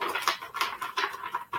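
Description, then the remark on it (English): A deck of dragon cards being shuffled: a run of quick, crackly riffling bursts, four or five in a row with brief gaps, moderately quiet, with no voices. “Dragons are flying out of the deck here. Trying to shuffle here.”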